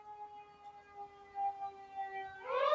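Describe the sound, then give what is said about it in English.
A fire station siren wails, holding a sustained tone with harmonics for over two seconds, then shifts into a louder, rising warble at the end. No one speaks. “Let me wait for that siren to go away.”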